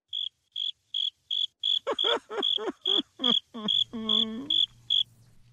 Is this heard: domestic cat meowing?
no